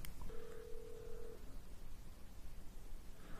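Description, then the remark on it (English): A telephone call tone: one steady electronic beep lasting about a second, followed by quiet line hiss as the call waits to connect. No one speaks. “Okay, let's do the phone call.”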